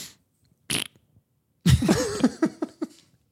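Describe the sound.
A short breathy puff, then a loud, drawn-out sputtering fart noise with a wobbling pitch, likely blown with the mouth, tapering off in a few final splutters. No talking.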